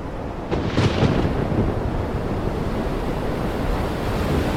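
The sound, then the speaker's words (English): A stormy sea roars steadily, waves surging and crashing amid gusting wind, with a brief louder swell of noise near the start and a deep, thunder-like rumble underneath. No voices. “It was a stormy 2-month trip over.”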